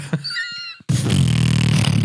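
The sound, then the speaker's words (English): A short, wavering squeaky tone gives way to a loud, sustained buzzing raspberry, a fart imitated with the lips that sputters steadily for over a second. “Okay, somebody else do a fart, and I'll try and emulate.”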